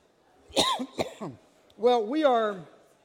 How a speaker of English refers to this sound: I am coughing my way through everything today. Excuse me.